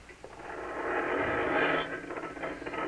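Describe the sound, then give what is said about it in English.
A steady mechanical rumble and rattle of a garage door rolling upward, building slightly and holding for a few seconds before easing off. Fairly loud, with no voices. “You open the garage door, then jump into the car.”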